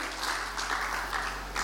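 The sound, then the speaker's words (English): A crowd of people applauding together, a steady dense wash of clapping with no voices rising above it; the audience is clapping for a man introduced by the speaker. “Before, can we clap for”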